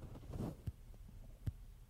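Two crisp, watch-like ticks of a mechanical titanium heart valve, roughly a heartbeat apart, heard with the recorder put to a man's chest, over a soft, muffled low rumble of chest sounds. No one speaks.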